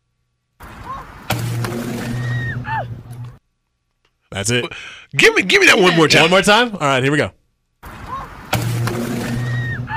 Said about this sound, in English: It is helium balloons hitting a power line.